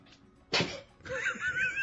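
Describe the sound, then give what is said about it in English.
A dog gives one short, sharp sneeze, a sudden nasal burst, followed a moment later by a stretch of muffled vocal sound. “My dog sneezing.”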